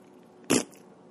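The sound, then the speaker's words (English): A single short fart from a woman, a loud breathy burst lasting a fraction of a second against an otherwise quiet background, with no talking. “You guys, she just farted.”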